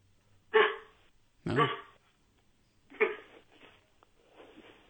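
A person imitates their Chihuahua's yappy barking: three sharp barks spaced about a second apart, followed by softer, muffled vocal sounds trailing off at the end.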